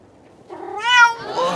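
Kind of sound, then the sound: animal, cat meowing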